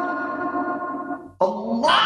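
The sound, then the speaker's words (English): The Wilhelm scream sound effect: a loud, drawn-out wailing cry breaks off briefly, then returns as a sharper, rising yell. No talking. “Ah, the Wilhelm scream.”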